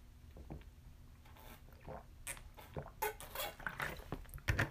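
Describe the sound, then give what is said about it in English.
Liquid sloshes and splashes inside a water bottle or cranberry bottle in a series of irregular bursts that grow a little louder toward the end, with no voices. “Water bottle, or cranberry bottle.”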